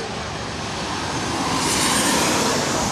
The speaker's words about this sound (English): And a Delta 737. Yep, Delta 800.